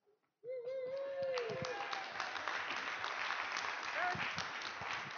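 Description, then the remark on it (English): An audience breaks into steady, sustained applause that holds at a strong level throughout, with a brief high whoop or cheer rising near the start, as a speaker from the Texas Certification Board of Addiction Professionals is called up to talk. “Don't clap yet.”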